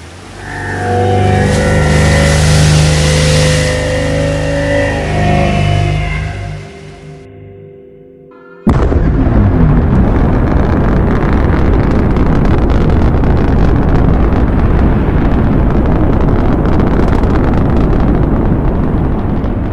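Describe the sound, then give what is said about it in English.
A shuttle engine labors to lift off with a loud, droning whine that wavers and sags for several seconds, then abruptly bursts into a steady, roaring rush of thrust that continues to the end. “The shuttle struggling to lift off.”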